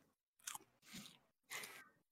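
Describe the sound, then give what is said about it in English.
Three crisp crunching bites into vegan chicken nuggets, each a loud burst of crackly chewing separated by brief pauses, with no talking. “He's got the cutest little crunch sound.”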